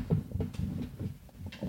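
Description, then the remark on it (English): The leg of a broken chair is slammed back into place: a few dull, low wooden thumps and clatters in quick, uneven succession, fairly soft, with no one talking. “You slam the leg in.”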